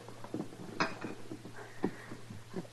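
A drink is poured into a glass, marked by two sharp glassy clinks and soft liquid trickles over a low, steady hum, with no one talking.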